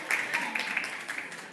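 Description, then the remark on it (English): A brief burst of scattered audience clapping, a loose patter of many hands at moderate loudness, with some vocal murmur mixed in, lasting under two seconds. “I was kind of hoping y'all would clap after these, but that's okay.”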